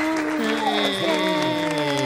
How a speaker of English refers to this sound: Get applause for being a therapist. Isn't that cool?